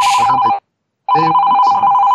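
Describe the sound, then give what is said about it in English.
A telephone rings loudly in two bursts, the electronic trilling tone stopping for a brief silent gap before ringing again. No voices are heard. “And then sometimes my phone would ring.”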